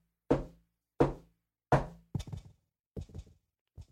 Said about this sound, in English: There was a pause for a brief moment before four loud knocks came from the back bedroom.